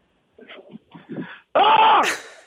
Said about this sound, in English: You just started screaming in the middle of the day. That's the first step? I think so, man. Did it feel good to scream or just weird? Yeah, no, it felt good.